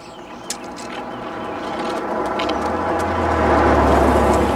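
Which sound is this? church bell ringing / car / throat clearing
car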